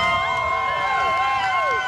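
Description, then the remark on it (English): A large crowd of onlookers in downtown Seaforth, Canada, cheers loudly outdoors as a tractor embedded in a building is removed, many overlapping voices whooping and shouting together in one sustained burst of excitement. “A cheer from an assembled throng of onlookers greets the removal of a tractor embedded in a building in downtown Seaforth since mid-October.”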